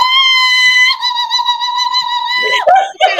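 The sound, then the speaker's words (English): A single voice imitates crowd cheering with a long, steady, high-pitched "woo" held for over two seconds, then breaks into a few shorter squealing bursts at the end. “This is me cheering. I am the audience cheering.”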